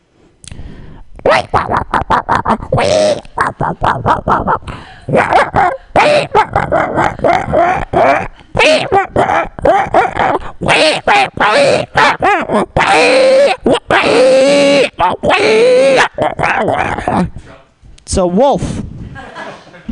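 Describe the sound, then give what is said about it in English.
A man's voice imitates a wolf, with bursts of growly, barking yips and a drawn-out wavering howl, busy and loud for most of the stretch before a brief pause. “It's a wolf. Different type of wolf.”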